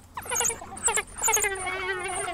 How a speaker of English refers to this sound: And here's what a wild dog sounds like. I thought it'd be like a bark, but this is a super weird sound. Listen.